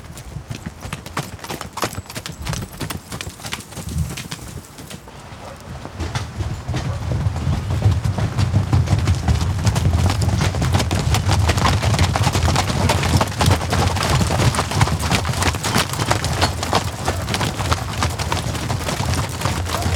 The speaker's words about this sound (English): It is spectacular, a surging sea of multicolored coats and streaming tails, hooves like drumbeats churning up a cloud of pale yellow dust as they canter past, hurrying for the wide open fields beyond.